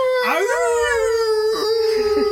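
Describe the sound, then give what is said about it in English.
A single long, mournful wolf howl that rises quickly and then holds a steady, drawn-out tone, loud and clear with no talking over it. “I feel like my wolf had been tranquilised this week.”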